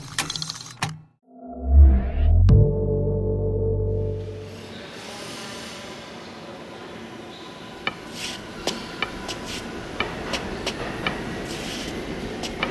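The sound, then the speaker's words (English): A D-train subway train rumbles loudly as it pulls away from the station, its deep roar swelling and then fading into echoing station noise dotted with sharp metallic clanks and clicks. “Stop the train!”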